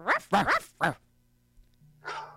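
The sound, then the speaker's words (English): A deep-voiced dog barks three times in quick succession, then gives one rougher, breathier bark after a short pause. The barks are loud, with no talking. “Oh, it's like a deeper dog. It's like, ruff, ruff.”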